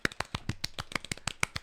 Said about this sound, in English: Golf clap? Golf clap.